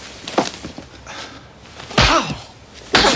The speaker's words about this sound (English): Don't you ever hit me. She just slapped him. He slapped her back. Hard.